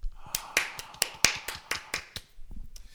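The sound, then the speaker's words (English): A small round of applause in a studio for a show's special guest: about a dozen sharp, crisp claps in a loose, uneven rhythm, fairly quiet and thinning out toward the end, with no voices. “A round of applause, ladies and gentlemen.”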